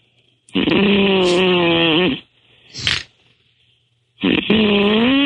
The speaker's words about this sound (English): The snoring man.